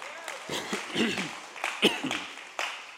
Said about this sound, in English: And you guys are helping us to do that. So give yourself a round of applause real quick here.